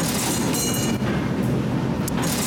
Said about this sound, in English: Let's go down into the subway station where you hear the strangest things.